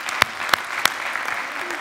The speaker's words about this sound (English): Give the Lord another applause. Amen.